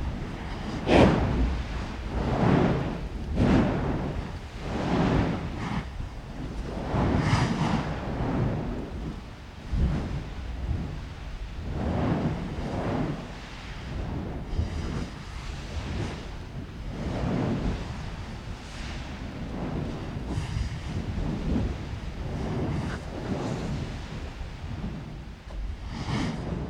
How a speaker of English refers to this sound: What you just heard is the splash and the flow of the lava below.